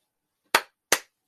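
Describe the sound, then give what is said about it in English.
A professor claps his hands twice, a little under half a second apart, each a crisp loud smack that fades fast, with silence before and after and no voices. “As the professor claps away”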